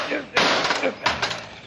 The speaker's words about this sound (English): Now wait till I smash this old rusty padlock.